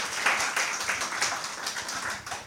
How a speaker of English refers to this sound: Please give a round of applause for our speakers, just to make them feel welcome.